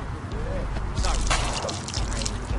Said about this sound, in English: Lift your drinks up if you're watching this movie in a theater at home and pour out a little liquor. It's a ghetto thing. Just play along. This one goes out to all the fallen soldiers out there.